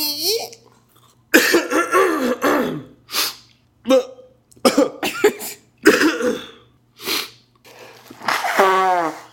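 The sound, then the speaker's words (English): A loud series of short nasal snorts and sniffling bursts, irregularly spaced, mixed with squeaky voiced tones, as someone makes a nose noise after blowing their nose and the pressure changes. “Because you blow your nose, and then the pressure changes.”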